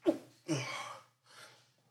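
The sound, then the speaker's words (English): A quick sharp intake of breath leads into one loud, explosive sneeze, followed by a softer breathy exhale or second smaller sneeze, with no talking. “Bless you.”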